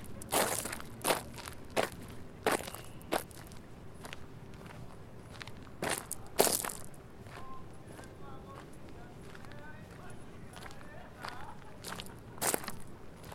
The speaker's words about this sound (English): and I brought along my Tascam DR40, and I recorded a bunch of sounds while I was there. Here I am walking around the grounds of the Lyceum. This was a school of philosophy founded by Aristotle.